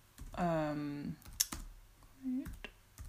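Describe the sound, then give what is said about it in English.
Slow, sparse computer keyboard taps, typed one finger at a time with uneven gaps, clear, while a person makes a drawn-out voiced sound and a short murmur in the background. “Who wouldn't want to listen to you slowly typing one finger at a time?”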